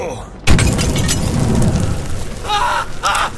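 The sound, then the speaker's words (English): A Molotov cocktail bursts in a video game with a sudden loud whump, then a sustained roaring, crackling rush of flame as a character catches fire, with two short harsh tonal cries sounding near the end. “Damn it, I thought I had a knife equipped, not a Molotov cocktail.”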